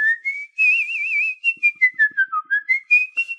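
A person whistles a short melodic tune, starting with a long wavering note and then a quick run of distinct notes that rise and fall, clear with no talking.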